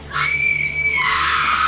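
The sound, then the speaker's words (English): A girl's piercing scream rings out loud, a shrill sustained cry that turns harsh and raspy before cutting off, with no talking around it. “She opens her mouth and she screams.”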